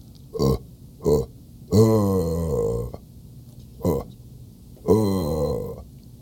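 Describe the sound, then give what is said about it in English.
A person vocally imitates a deer buck grunt call: two short guttural grunts, then a longer drawn-out grunting call, another short grunt and a final long one, fairly loud with no words. “we won't even put a time on it because you just have to make three call noises.”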